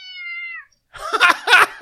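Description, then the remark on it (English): A pet cat meows twice: first a thin, high, drawn-out cry that fades, then after a brief pause a louder, rougher, more insistent meow. No one speaks. “there's my cat, man.”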